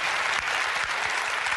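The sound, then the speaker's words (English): Steady, dense audience applause after a tweet about Ellen and George Bush is read aloud, a continuous wash of many hands clapping at an even loudness throughout, with no voices standing out above it. “Listen to the applause.”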